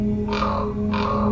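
Two harsh, croaking common raven calls sound in quick succession, fairly loud, over a steady low background hum.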